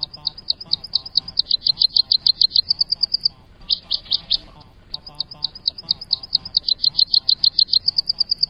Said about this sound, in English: The Tennessee is not the most colorful of warblers, with olive upper parts and pale whitish underparts, but it kind of makes up for that with its distinctive song.